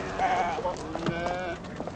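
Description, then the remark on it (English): Goats bleating while being herded, with several overlapping wavering, nasal cries rising and falling over a steady background hum, the calls fairly loud and crowded together. “Yep, hustling some goats along.”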